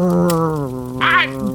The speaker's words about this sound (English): Dang it, Clay, call off your cur dog. Easy there, boy.